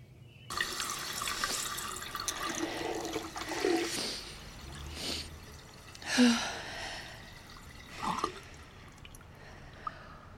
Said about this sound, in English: I'm getting a glass of water.